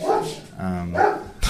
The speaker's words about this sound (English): Damn dog going crazy. Said it. Chill. But tweaking. Heel.